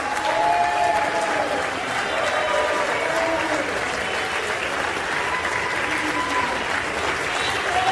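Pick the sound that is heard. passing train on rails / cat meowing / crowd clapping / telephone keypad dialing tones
crowd clapping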